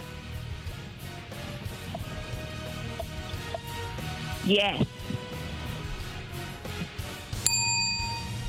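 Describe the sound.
A bright bell rings once near the end and lingers, sounding like a quiz buzzer-bell. Before it, a short rising chirp cuts through a murmur of background voices.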